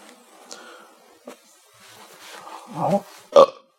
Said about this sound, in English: I'm sorry, I had a burp. Can I get a second to burp?